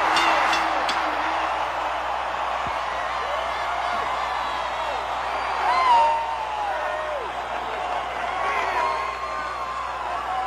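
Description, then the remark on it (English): A capacity arena crowd in Minneapolis, Minnesota, on its feet, roars and cheers continuously as Hulk Hogan defends his World Wrestling Federation title over Dr. D. David Schultz: a dense, loud wall of noise with scattered whistles and whoops rising above it, swelling briefly near the middle. “Capacity crowd on its feet as Hulk Hogan successfully defending his title this week here on the World Wrestling Federation.”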